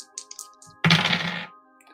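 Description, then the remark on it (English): A few faint clicks, then a loud, bright rattle of two dice rolled during a tabletop role-playing game, tumbling across a hard surface for about half a second and landing on a 5 and a 3, with a steady low hum underneath and no talking. “you said you don't have dice sitting there with you”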